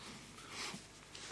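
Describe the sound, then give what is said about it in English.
A short, breathy nose-blow, a rough airy rush with a brief snorting burst in the middle, lasting just over a second with no talking. “Okay, I'm going to blow my nose for the final stretch.”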